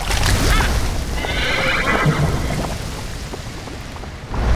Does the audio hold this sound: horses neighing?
yes